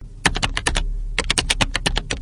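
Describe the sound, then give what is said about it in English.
Rapid, crisp clacking of keys on a computer keyboard, in two quick bursts separated by a short pause, with no voices. “Need the sound of an electric keyboard in a power outage?”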